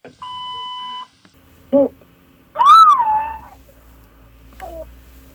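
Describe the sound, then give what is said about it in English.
A steady electronic phone tone sounds first, then a boy's shrill, rising-and-falling screams come through a phone line in a voicemail message in a few bursts, the longest about a second, with no talking. “That was my son screaming down the phone, and he's important to me and means a lot to me.”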